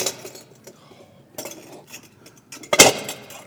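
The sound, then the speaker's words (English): River rocks are put into a glass jar to fill it: scattered light taps and rattles, then one sharp, loud crack of stone on glass near the end as the glass breaks. No one speaks. “I'm going to fill this with these rocks.”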